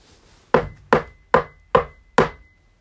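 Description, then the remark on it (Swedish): Five sharp knocks in a steady, evenly spaced rhythm, each a crisp woody strike with a quick decay, clear with no voices; someone knocking in a forest among the trees. “Plötsligt så hör de någon som knackar.”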